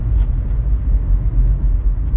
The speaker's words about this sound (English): I know that it was in the Ukraine, and all the note says is that a car crashing? ? Nope. Just a Ukrainian truck.